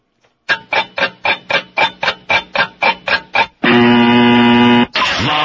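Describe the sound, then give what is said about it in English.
Loud countdown clock ticking, about a dozen evenly spaced electronic ticks, that ends in a long sustained buzzer blast, followed by a second steady tone. No voices are heard. “Which one? The ticker? Clock, the ticker.”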